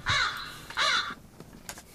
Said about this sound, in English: I guess I don't need to let the crows play all the way through. But it's fun for me. It's hilarious.